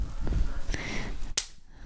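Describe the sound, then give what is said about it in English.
A single sharp, crisp hand clap rings out, preceded by a couple of fainter taps and light background rustle, with no one speaking. “We should do a little clap, though.”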